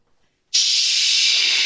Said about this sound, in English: …, I can hear you breathing like an air conditioner.